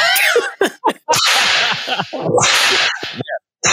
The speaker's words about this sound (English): There, I gave him a whip.